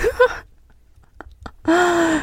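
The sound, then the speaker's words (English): Someone out of breath gasps: a short vocal catch, a quiet pause with faint clicks, then a loud, strained, partly voiced inhale drawn out for over half a second. “I don't know why all of a sudden, like, I'm out of breath.”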